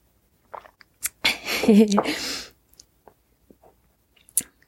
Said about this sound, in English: Yeah, think about that for a bit, and I'll take a sip of tea and let you see.